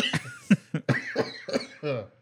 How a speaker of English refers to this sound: Sorry, I got a cough.